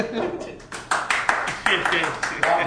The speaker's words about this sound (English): Audience, please give a round of applause. To themselves.